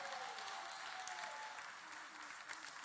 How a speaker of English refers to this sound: can you just turn around and just clap 3 times for everybody?